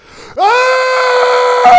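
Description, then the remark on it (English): A person imitates a young man's scream that sounded like a lion, voicing a long, loud, piercing scream, rising sharply in pitch at the start and then holding steady, strained and harmonic-rich for over a second. “It was the scariest sound I've ever heard in my life.”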